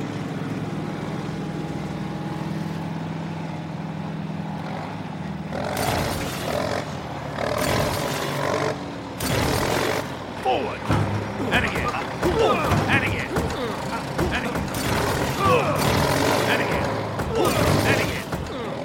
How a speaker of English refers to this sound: Okay, lads. Time for some real power. Call in the bulldozer. BD to the door. That's BD to the door.